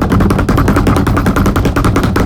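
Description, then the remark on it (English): A rapid, continuous drum roll of dense, evenly spaced hits, loud and sustained for a couple of seconds with no talking over it, introducing a special guest. “Drum roll, please.”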